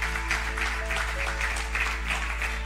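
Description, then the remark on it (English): A church audience claps steadily together as people come to the front to be prayed with, a dense, continuous patter of many hands, with a low hum underneath and no one speaking. “There are people clapping because they know what God is doing right now.”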